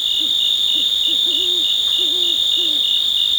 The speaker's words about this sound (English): We leave you this week with the sounds of a summer night in the Cascade Mountains of Northern California. Crickets and cicadas form the backdrop to the splashes and croaks of bullfrogs. A great horned owl out hunting hoots occasionally.